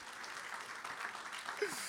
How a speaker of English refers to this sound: Great job. You did great. Can we clap it up for Alex? Yeah.